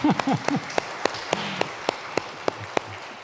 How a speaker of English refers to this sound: We often don't applaud in church, but these people work tirelessly.